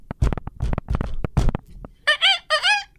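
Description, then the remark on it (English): A voice makes a rapid series of high, wavering squeaks in imitation of a dolphin, three quick bursts, following a stretch of percussive clicking and knocking sounds of a secret trade knock. “Okay, that's the dolphin squeak? That's the dolphin squeak, yeah.”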